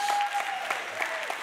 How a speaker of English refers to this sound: Hey, if this is your first time here, welcome. Let's give all of our first-time guests a round of applause.